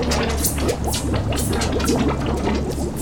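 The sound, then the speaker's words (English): Steady, continuous rush of flowing water with bubbling, gurgling textures throughout, fairly loud, with no voices. “I can hear water, but I don't feel wet.”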